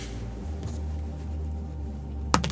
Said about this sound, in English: Roll a dice on the table for me. Oh, it was a 6 too. It is a 6.